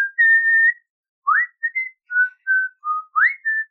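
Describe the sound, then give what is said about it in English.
A person whistles the short melodic intro tune of a Disney film: a long held opening note, then a series of brief rising and steady notes in a clear, bright tone, with no talking. “The only thing I remembered as a child is the intro. You know, what I was just whistling at the very beginning, you know.”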